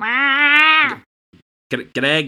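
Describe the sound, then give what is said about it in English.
A person's voice imitates a large ginger cat mewing: one long, drawn-out meow, a brief pause, then two shorter meow-like cries, fairly loud. “Okay, so yeah, there's this massive ass ginger cat, like, it's like doing a little like jump at you and mewing.”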